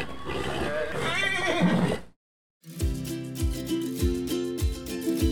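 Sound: horse neighing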